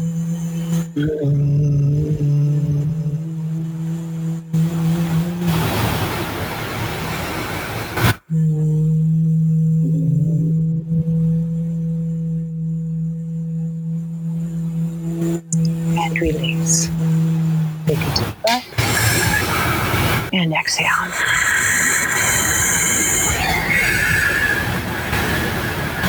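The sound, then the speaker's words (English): Several voices hum together in a steady, low, buzzing drone, held through long breaths with a few brief pauses between, before the humming gives way to louder, rougher noise at the end, during a yoga breathing exercise with tongues pushed against the roof of the mouth. “Push the tongue on the roof of your mouth really strong and just hum.”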